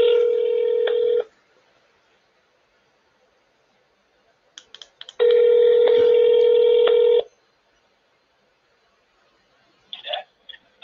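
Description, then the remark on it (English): A telephone rings out through the line, two long steady electronic rings separated by a pause of silence, with a few faint clicks before the second ring and a brief noise at the end. “Could you call me on my phone so we can discuss this?”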